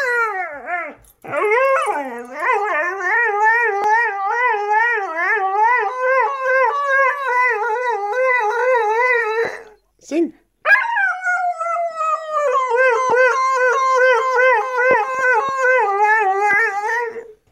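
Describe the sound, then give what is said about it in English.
A skinny husky-cross dog howls in long, wavering, sing-song notes, pitch sliding up and down almost continuously, with a short break partway through before the loud howling resumes; recorded in May 2015. “Dexter was a husky sort of cross of some sort. Skinny little beautiful, dog.”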